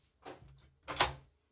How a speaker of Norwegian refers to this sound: Ja, bare lukk døra der.